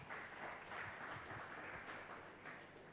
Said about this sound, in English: Clap your two hands for Jesus.